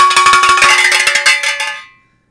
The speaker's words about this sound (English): Yay! Stereo cowbells are back. Yes. Fun Paper Friday.